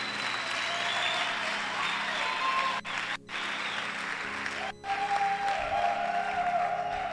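A church crowd applauds the preacher at his request, clapping steadily for about seven seconds, dense overlapping claps forming a continuous wash of noise, with a couple of brief dips before the clapping swells again.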